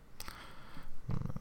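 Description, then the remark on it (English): A cat purring, a low rumbling drone that swells and grows louder toward the end, with a few soft rustles before it. No one speaks. “Hi, cat.”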